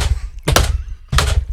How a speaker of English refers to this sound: Thank God that's just the sound of her walking. Because I don't want that to be anything else.